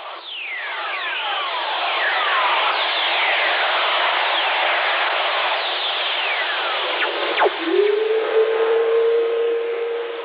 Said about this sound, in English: When lightning strikes, it releases electromagnetic radiation that can be picked up by radio operators, who call them earth whistlers.